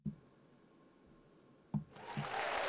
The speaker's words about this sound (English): Had to hit that clap. Had to hit that applause.